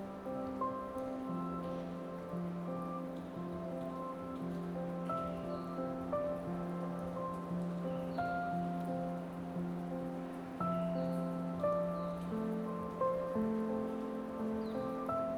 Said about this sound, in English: Listen carefully for the wisdom inside the raindrops.